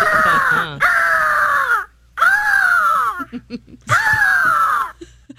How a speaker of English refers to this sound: This is labeled Eagle Deep Angry.